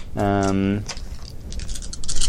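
A brief sustained vocal sound gives way to dice being picked up and handled, taken from another player: an irregular run of small hard clicks and rattles that grows busier toward the end.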